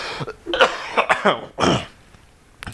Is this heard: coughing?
yes